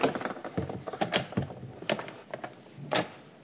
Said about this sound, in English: I want to open up our big double doors to the church.